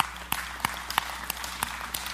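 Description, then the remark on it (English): A church audience applauds, with scattered sharp claps rising above a steady wash of clapping hands. The applause stays fairly even and moderate in loudness for about two seconds, with no voices. “I know you're clapping, but that's going to be tested one day.”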